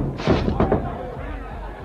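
A heavy barrel of molasses, hanging from a swinging boom, falls when its rope breaks and crashes down onto a dock: a burst of loud, deep thuds and splintering impact over about half a second, followed by a low rumbling decay.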